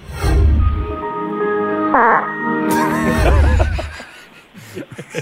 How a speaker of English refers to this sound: as soon as I started listening to the track, I thought to myself, well, I know where the fart's going to go